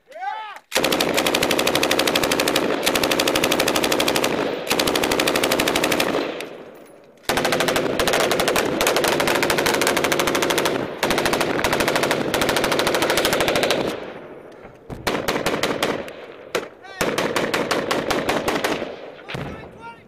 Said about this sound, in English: I know for Battlefield, they were very, very smitten with the sound of like the YouTube videos from Afghanistan, which had huge reverbs on the gunshot.